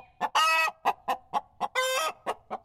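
A chicken clucks in a quick series of short, clipped clucks, broken twice by longer, harsher squawking bursts, with no other sounds around it.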